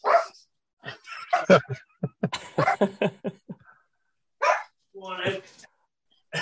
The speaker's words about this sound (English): The problem when the wife coming back and the dogs are all going berserk because she's coming back into the house.